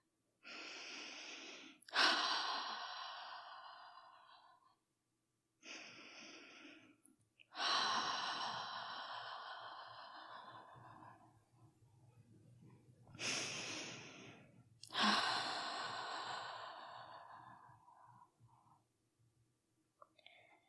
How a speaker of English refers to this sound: So, not if you're driving a car, not if your kids are talking to you right now, but if you can, close your eyes and take three deep cleansing breaths.